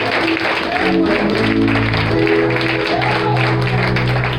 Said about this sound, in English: stand in your feet and give those babies some recognition. Can you stand on your feet, just clap your hands.